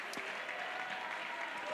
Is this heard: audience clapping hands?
yes